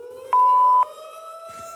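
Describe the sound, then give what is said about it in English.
A sustained siren tone, put in the background while voicemail is played, hums steadily, rising slightly in pitch, while a loud, half-second electronic beep cuts in near the start. No one speaks. “So I've decided to go through some of my voicemail, but put a siren in the background.”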